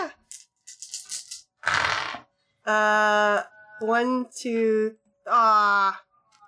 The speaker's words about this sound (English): I'm just going to empathy roll that. Okay. I want to know how truthful he sounds. He just wants some trinkets. I'm totally not like rolling dice over here for no reason.